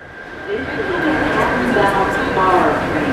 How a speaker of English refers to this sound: I got back on the subway and changed at Atlantic Avenue.